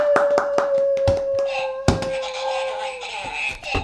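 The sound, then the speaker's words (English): Scattered applause from a small group at the end of a trivia game, Checkers Trivia, sharp irregular hand claps at first that thicken into a busier burst of clapping, with a steady humming tone sounding underneath for most of it. “Everyone give it up”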